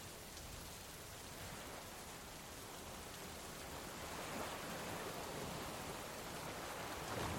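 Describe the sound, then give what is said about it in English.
Heavy rain from a storm on a rough night pours down outside in a steady, dense hiss, swelling slightly louder partway through, with no voices and no distinct thunderclaps standing out. “And outside, the storm raged on.”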